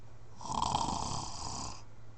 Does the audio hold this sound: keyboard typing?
no